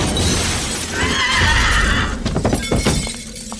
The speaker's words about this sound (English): The glass shattered.